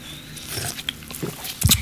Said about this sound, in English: Before we start, let's have a sip. Yeah, sip.